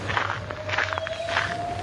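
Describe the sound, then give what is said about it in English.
A few footsteps walking down a path, soft scuffing steps in an uneven rhythm, with a faint steady tone and low hum underneath. “Okay, let's keep walking.”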